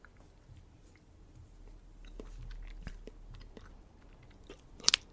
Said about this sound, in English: If you get caught doing that... Doing what? That. What? Chewing gum.